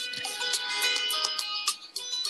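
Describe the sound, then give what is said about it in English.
A mobile phone rings with a bright, electronic melodic tone that plays steadily for a couple of seconds, clear, with no one speaking over it. “My phone was ringing.”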